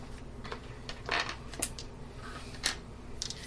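Dice rattle and clatter across a tabletop in a few quick bursts of sharp clicks, moderately loud, over a low steady background hum.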